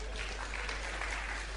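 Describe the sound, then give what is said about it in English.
An audience applauds itself steadily, a dense, even wash of many hands clapping at once with no pauses, holding a constant level throughout the short stretch. “Clap for yourself.”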